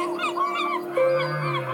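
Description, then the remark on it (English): Long, eerie whale calls played from a sound app moan and glide over steady sustained tones, with rising and falling cries layered on top, heard alone with no talking. “You can add whales.”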